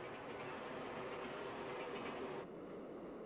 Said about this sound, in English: And Hackman goes to the next station, expecting that he's beaten the train to 25th Avenue, but the train blows right by the station.